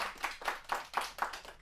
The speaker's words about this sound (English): It's my absolute pleasure. Let's give a big round of applause and welcome Joy Spence.